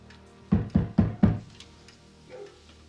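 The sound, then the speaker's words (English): Four sharp knocks on a wooden door in quick, even succession, loud, followed by quiet with a faint rustle afterward. “Knock on that door.”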